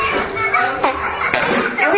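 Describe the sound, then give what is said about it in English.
A fart sound made with the mouth, a loud buzzy raspberry that sputters on steadily for about two seconds with a few brief bursts along the way. “And then make your fart sound.”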